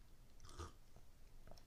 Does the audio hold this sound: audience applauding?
no